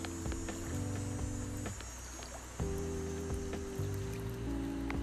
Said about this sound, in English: We are currently on a little beach, little mini beach, by little mini water. It's a lake, pretty good lake, things like that.